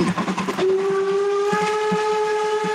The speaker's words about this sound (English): The rails have split, and the train is just driving down on the ties, going clackety clackety clackety clackety clackety clack.